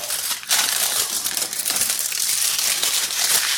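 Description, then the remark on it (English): A chocolate wrapper is torn open and crinkled before the chocolate is melted to coat biscuits. It makes a steady run of dense, bright crackling and rustling that keeps going without a break, with no voices. “So, opening the chocolate”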